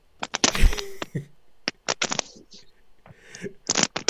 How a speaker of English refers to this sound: We just got a lot of rustling from you.